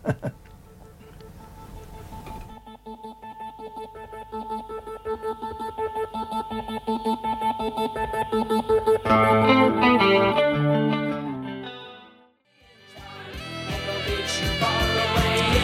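A new wave pop song plays loud and steady with a bright, effects-heavy synth and guitar sound, thickening into a fuller arrangement partway through before a brief drop and return. No one speaks.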